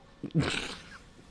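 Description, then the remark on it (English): A single short, sharp bark from a stray dog, rising quickly and trailing off within about half a second, with quiet background otherwise. “Oh, it was just a dog barking, it turns out.”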